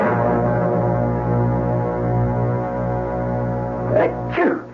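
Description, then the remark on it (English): A steady, droning hum fills the background, then two quick sneezes burst out close together near the end, sharp and fairly loud against the constant tone. “I heard you sneezing.”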